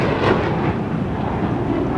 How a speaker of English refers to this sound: Join us on a supersonic jet run on sustainable aviation fuel.